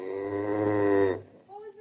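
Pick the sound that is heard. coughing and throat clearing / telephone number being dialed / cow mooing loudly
cow mooing loudly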